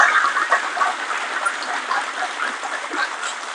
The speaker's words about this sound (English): But can we give a round of applause for our panel here today?